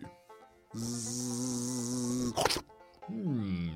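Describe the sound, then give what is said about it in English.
A voice imitates a fly's buzzing with a steady, droning hum of about a second and a half, followed by a short breathy burst and the start of another vocal sound. “The frog was sitting there on a log, and he was waiting for some flies and butterflies and other yummy bugs to come by.”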